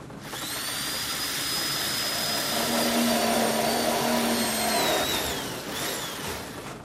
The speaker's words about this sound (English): I think we're clear. Try the drill now.